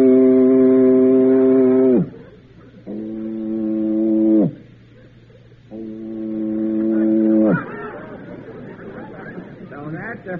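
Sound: voice imitating a foghorn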